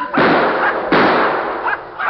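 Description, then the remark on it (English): Two loud gunshots, a rifle shot and a pistol shot fired by Bill Cody at prairie dogs, each hitting one, crack out less than a second apart, each followed by a long, rumbling decay that fades slowly. “By jumping juniper, he nailed two of them. One with the rifle and one with the pistol.”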